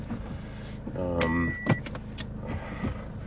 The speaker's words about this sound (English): So the car's beeping for fuel, which is, that's annoying, isn't it?